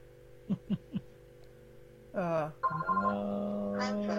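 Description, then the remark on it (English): A phone rings with an electronic ringtone: three short chirping blips, then a louder run of sustained melodic tones over a low steady hum. “And there's my phone, as always.”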